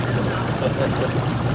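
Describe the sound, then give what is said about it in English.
Hot tub bubbles coming on and churning steadily, a continuous rushing, frothy roar with a deep low hum underneath that holds an even loudness throughout. “The bubbles just came on in the hot tub.”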